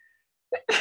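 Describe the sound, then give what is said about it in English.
A single sharp sneeze: a brief voiced intake followed by an explosive, hissing burst, with near silence before it. “Bless you.”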